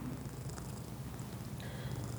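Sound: cat purring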